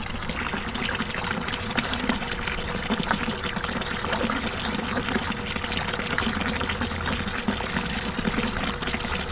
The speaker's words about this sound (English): It's one of those old-fashioned water pumps, and it's pumping into a wooden barrel, a large wooden barrel. That's about a foot high.